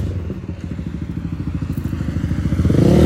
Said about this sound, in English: Hold up. Let this motorcycle pass by.